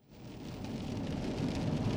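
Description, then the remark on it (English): Steady rain on a rainy night, a continuous hiss over a low rumble like road noise, fading in quickly and holding at a moderate level with no one speaking. “It was a rainy night. So you're going to hear a bit of road noise. You're going to hear a bit of rain.”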